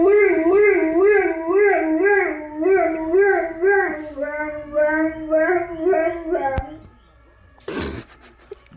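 A dog in Germany howls in a long, wavering, siren-like tone, imitating the siren of an emergency vehicle it heard, rising and falling rhythmically for several seconds, then breaks off; a short rustling burst follows near the end.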